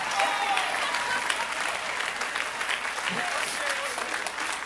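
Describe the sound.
Sustained applause from a crowd, a dense, steady patter of many hands clapping at even loudness throughout, with faint voices mixed in beneath it.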